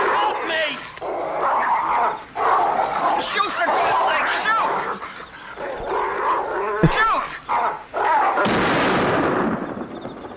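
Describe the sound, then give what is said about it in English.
A single sharp gunshot from a video game, a character shooting the mayor, cracks out near the end, loud and brief, over a busy bed of game noise with voices talking throughout. “I think he did shoot the mayor.”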